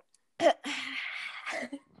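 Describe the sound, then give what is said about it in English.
Someone slurps a drink of water: a short wet suck, then a longer airy, hissing slurp lasting almost a second, ending with another brief slurping gulp. No talking. “Dang it, did you hear the slurp? Yes, I heard the slurp.”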